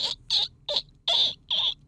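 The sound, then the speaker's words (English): A woman imitates a dolphin with five quick, high-pitched squeaks in a steady, chattering rhythm, fairly loud, with no talking around them. “Dolphin's the best, though, right?”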